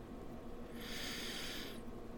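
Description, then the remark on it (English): A single slow, deep breath drawn in through the nose during a guided breathing exercise, a soft airy hiss that swells and fades over about a second, quiet with no talking. “Breathing in.”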